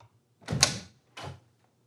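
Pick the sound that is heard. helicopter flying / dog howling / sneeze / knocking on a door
knocking on a door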